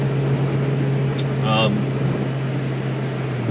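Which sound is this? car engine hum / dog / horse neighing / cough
car engine hum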